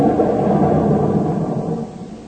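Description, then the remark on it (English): A dam being blown up in a canyon: a loud, deep explosion rumble that roars steadily for a couple of seconds and slowly begins to fade, with no voices over it. “That was it, Jim. Blew it to high heaven.”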